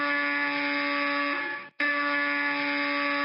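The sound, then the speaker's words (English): A harsh electric apartment door buzzer, going off repeatedly, blares loudly and steadily, cuts out for a split second, then immediately starts buzzing again just as loud, with no voices. “The buzzer of Scrooge's door, the buzzer that had been broken for more than 10 years, suddenly began going off repeatedly.”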